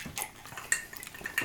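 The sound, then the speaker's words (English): Glasses of whiskey clink together in a toast: two bright, ringing taps about a second apart, the second slightly louder, with faint clattering and rustling around them and no voices. “Tink. Cheers. Cheers.”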